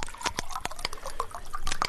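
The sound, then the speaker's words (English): A drink is poured into a glass: a steady burbling stream of liquid with bright, gurgling plinks and splashes throughout, moderately loud, with no one talking. “Yeah, let's have a drink on it.”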